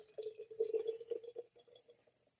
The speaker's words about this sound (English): Friday Happy Hour, my Mason Jar mug. Let's give it a pour. Let's see what it looks like and have a taste.